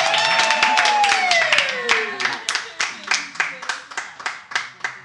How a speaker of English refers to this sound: And so we're gonna ask that you, wherever you are, would you cheer and welcome, and we'll do the same, but we get to bring our brother,